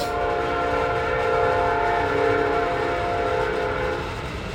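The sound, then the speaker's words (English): A train starting up, with a loud, steady horn-like drone held for several seconds over a low rumbling rail noise, easing off slightly at the end. No one speaks. “Wow, the train? Not the train starting up.”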